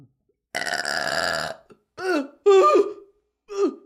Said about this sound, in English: Got a burp.